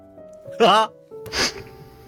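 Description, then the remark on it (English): A single sneeze in two parts, a voiced, rising intake followed by a sharp, breathy burst, heard over a faint steady background hum. “Gesundheit.”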